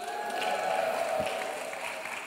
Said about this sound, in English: We're thrilled to have you with us as well. Let's all give them a big cheer.